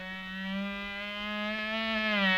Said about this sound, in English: What's that? Oh, dear, it's one of those military-minded mosquitoes, and he's making right for Crazy Quilt.